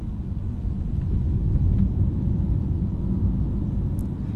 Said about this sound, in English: So we're driving through the back end of Midrand here, near Grand Central Airport. We're looking for some open road. There's a lot of traffic around us. We're looking for some straight road without traffic to see what this electric motor can do.